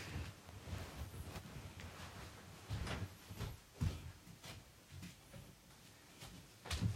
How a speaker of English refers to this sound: Mom would like you to close the door.